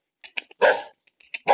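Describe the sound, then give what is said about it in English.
A black and white dog in Cantabria barks: a few quick, soft yips, then two loud, full barks spaced about a second apart, with no voices. “Those black and white dogs. There are quite a few of them here.”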